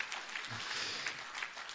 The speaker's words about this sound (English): Sure, you could clap for that one.